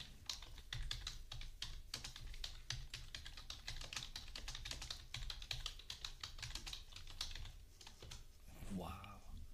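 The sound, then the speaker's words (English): Rapid, steady clacking of keys on a computer keyboard, continuous for several seconds, ending with a brief voice at the end. “You're a fast typer.”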